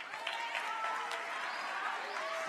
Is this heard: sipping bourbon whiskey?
no